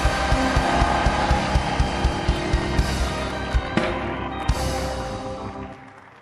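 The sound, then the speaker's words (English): A large audience claps and screams together, a dense roar of voices over sharp, steady handclaps, with a few louder claps standing out before the noise fades at the end. “Come and clap your hands and scream.”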